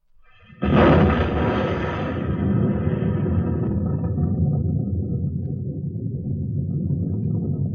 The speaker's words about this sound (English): There it goes. There it is. You'll hear the sound of the explosion any second now.